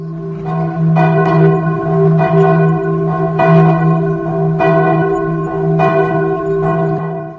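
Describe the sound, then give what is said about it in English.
Large alarm bells toll loudly and steadily from an outer wall, struck about once a second, each ring hanging on and overlapping the next in a continuous clanging wash. No voices are heard. “Everyone on the street froze, staring towards the outer wall where the alarm bells tolled.”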